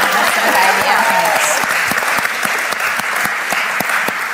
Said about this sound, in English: Okay, we're going to clap twice because she's literally 4 weeks from her baby being delivered. So do you maybe want to clap again?